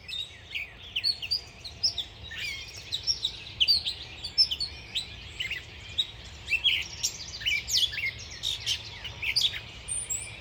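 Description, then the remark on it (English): A busy chorus of many birds in trees outdoors chirping and trilling at once, recorded on a phone, overlapping calls rising and falling continuously, with a low outdoor rumble underneath and no voices. “And then I walked outside and I was greeted with a symphony of song from birds in the trees.”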